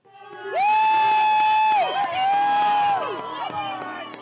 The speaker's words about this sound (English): Crowds in bright puffy jackets cheer from the edge of the Uncompahgre Gray Gorge, the gut-twistingly deep centerpiece of the Uray Ice Park.